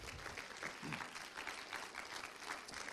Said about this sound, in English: Would you give her a hand clap as well?